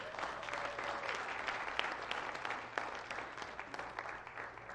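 A church audience applauding steadily to thank a church member ahead of her birthday, a dense patter of many hands clapping at once, sustained for several seconds with no talking over it, moderately loud.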